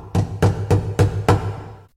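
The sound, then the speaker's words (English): Five heavy, evenly spaced knocks on a wooden door at night, each a deep booming thud with a short resonant tail, delivered in a steady rhythm with no voices. “Later that night, he awoke to the sound of a heavy knock at the door.”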